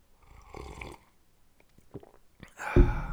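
A soft slurping sip of hot black coffee, followed by a few faint mouth clicks and a swallow, then a louder, breathy exhale of satisfaction. No one speaks.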